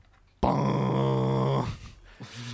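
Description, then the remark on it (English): A voice imitates a giant foghorn horn fitted to the back of a car in a video game: one deep, buzzy, sustained blast lasting just over a second, cutting off abruptly and followed by quiet breathy sounds. “Like, you get, like, a giant foghorn that you can just chuck on the back of your car.”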